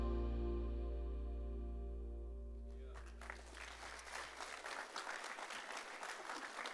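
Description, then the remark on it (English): A large indoor crowd at a church bursts into sustained applause for a graduate, dense rapid clapping following the fading tail of a low, resonant organ-like chord, with faint voices mixed in. “It is an accomplishment worth clapping for, isn't it?”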